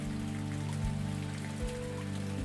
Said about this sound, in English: Imagine the power of the rain cleansing and nourishing your body, just like it does to the earth and trees.